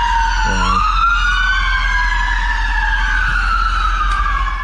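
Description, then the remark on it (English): Ambulance sirens wail loudly and continuously as ambulances arrive at an arena, their rising and falling tones overlapping, with a low rumbling hum of traffic underneath and no talking. “Ambulances showing up to the arena.”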